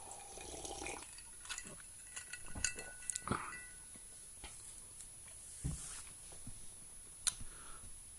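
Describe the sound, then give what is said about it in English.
Quiet sipping from a cup, with a few light clinks of the cup being handled and a short slurp partway through, set against soft background hiss. Nobody speaks. “Well, let me have a sip of this because, gosh, this is so delicious.”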